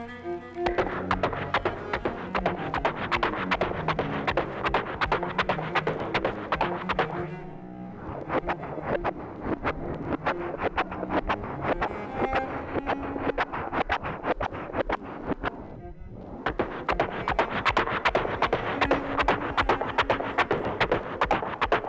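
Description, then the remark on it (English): A horse's hooves clop along at a steady walking pace as a rider starts it out on a simple walk, fairly loud, over a constant rushing, wind-like background noise that dips briefly twice. “And then he starts the horse out with just a simple walk.”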